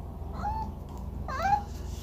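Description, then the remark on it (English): A cat, Lady Butternubs, meows twice: a short, slightly rising cry, then a second, louder meow a moment later, over a low steady background rumble. “Well, so also joining us today is, Lady Butternubs, my other cat.”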